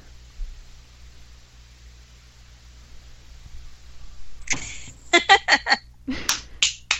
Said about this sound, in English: That's a clap. Edit that out. Thought we'd leave it in, but that is a whole other topic.